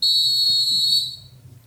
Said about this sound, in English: Blow the whistle time.